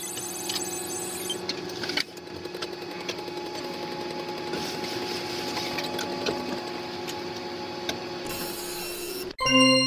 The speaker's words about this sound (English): Sending model coordinates to 3D printer.